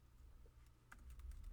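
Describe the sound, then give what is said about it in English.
Quick keyboard typing, a short burst of several crisp key clicks, played over a steady low background hum with no one speaking. “Let's find out. We're typing.”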